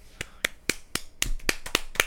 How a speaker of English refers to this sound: You're just slapping your thigh. Slapping my thigh.